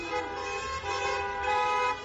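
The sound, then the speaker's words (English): A sustained, blaring car horn honks continuously for about two seconds, loud, with a slight swell in intensity near the end and traffic rumble underneath; in China, users of the Neihan Duanzi app beeping car horns to greet one another in public. “Videos shot by users show them greeting one another with coded messages in public, beeping car horns, opening car boots.”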